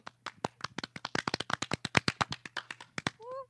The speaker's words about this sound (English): Canned clap track.